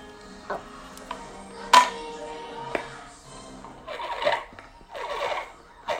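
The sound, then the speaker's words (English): Someone makes a whale noise with a plastic water bottle: a few sharp taps and clicks, then wavering, squeaky moans that rise and fall twice, moderately loud. “Yes, they love making the whale noise with these water bottles.”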